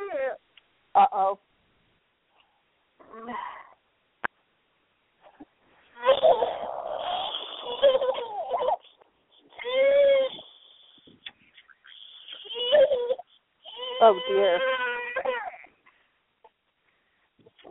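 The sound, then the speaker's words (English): A baby screams in several loud, high-pitched, strained bursts separated by brief pauses while its nose is vacuumed with a battery-powered nasal aspirator, with an adult voice murmuring a few words early on. “You want to hear a baby scream?”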